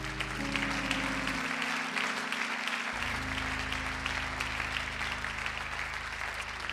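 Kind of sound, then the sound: crowd, audience clapping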